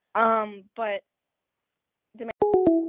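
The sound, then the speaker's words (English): A voice speaks briefly, then after a pause a couple of sharp clicks cut in and a steady, loud electronic phone-line tone sounds as the caller drops off the call, holding on to the end. “Well, luckily, I think we have the phone call, so she can keep calling back in, and we don't actually hear the ring.”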